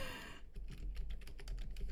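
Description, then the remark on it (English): A woman types rapidly and forcefully on a computer keyboard, a dense run of sharp key clacks in quick irregular succession, fairly loud with no voices. “She is so aggressively typing, and all I see is red lines indicating she's not spelling anything correctly.”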